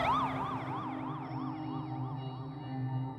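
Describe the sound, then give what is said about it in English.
Fire truck sirens from fire trucks arriving from everywhere warble rapidly up and down in a steady, fast cycle, sounding continuously over a low rumble of engine or traffic noise, with no voices. “And pretty soon you would just hear fire trucks going from everywhere.”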